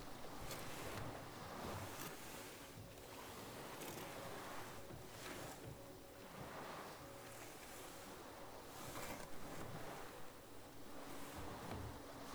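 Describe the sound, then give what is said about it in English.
Sea waves surge and wash outside a sea cavern in a continuous broad roar, swelling every couple of seconds in rolling pulses, with a windy hiss throughout and no voices. “You can feel the pulse of the sea from outside the cavern.”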